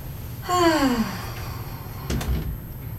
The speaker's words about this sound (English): And let me hear your breath.